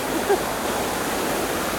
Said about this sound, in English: So we're going past a lovely water feature at Kennedy Gardens.